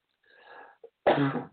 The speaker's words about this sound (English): Covered cough.